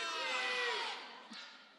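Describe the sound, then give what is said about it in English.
An audience yelling all at once on a count of three, many voices shouting their favorite ice cream flavors together in a loud, dense roar that swells briefly and then fades over under two seconds. “on the count of three, I want everybody to scream at me their favorite kind of ice cream, and I'm going to remember that, okay?”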